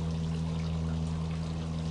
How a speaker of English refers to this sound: Can you hear the water in the background?